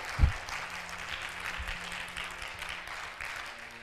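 A church audience claps hands at the preacher's call during a sermon, in a steady, dense wash of applause that holds at an even, moderate level throughout, with a single low thump near the start.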